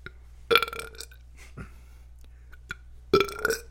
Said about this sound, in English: Oh, those are upper body burps. Oh, it's UBBs.